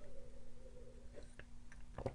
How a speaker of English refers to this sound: A little sip of tea. God, I love green tea.